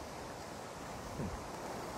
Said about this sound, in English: Strong winds and huge waves are currently battering the southern Keys as residents flee to safer areas inland.